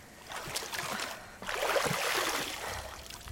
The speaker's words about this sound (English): There's a fountain on the corner. Water is flowing throughout the city. A gift from the Balorak.